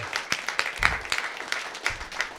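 A crowd breaks into applause, a dense patter of many hands clapping at moderate volume with sharp scattered claps standing out, steady for a couple of seconds with no voices on top.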